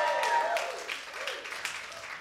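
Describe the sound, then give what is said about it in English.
A church audience applauds and cheers steadily in celebration, with scattered whoops rising over a dense wash of clapping that carries on without a break. “Can we get some praise in here?”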